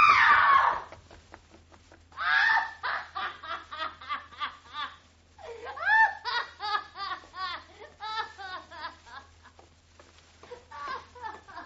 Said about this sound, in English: She screamed.